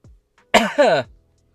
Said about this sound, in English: That's just a well-timed cough. Don't think too hard about it.